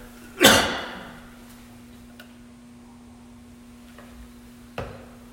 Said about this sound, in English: Excuse me, I just need to clear my throat. I gotta get some water.